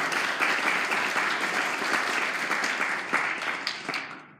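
An audience applauds Tori, many hands clapping in a dense, steady crackle that holds strong for a few seconds and then thins out and fades at the end.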